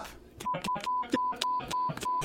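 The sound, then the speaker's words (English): A rapid run of about seven short, steady mid-pitched censor beeps bleeping out spoken names, each alternating with brief clipped bursts of voice, like chopped-up speech bleeped out in quick succession. “Anytime one of us says one of our names, we have to go beep.”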